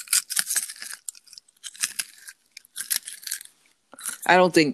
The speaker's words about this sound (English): I think I'm going to give our fans a little ASMR of Garrett's popcorn Okay. and the deliciousness that is crunching in my mouth.